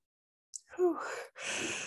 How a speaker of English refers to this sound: A yawn is really good. That signifies we're actually changing something.